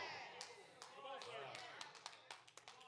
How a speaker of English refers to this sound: Y'all half-hearted clapping on me, that's all.